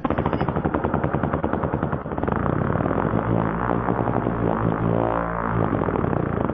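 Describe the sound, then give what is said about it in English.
A motorboat's propeller failing: a loud, rapid rattling chop for a couple of seconds, then a dense, continuous churning roar with wavering, whining engine-like tones. No one speaks. “That was a motorboat's propeller failing.”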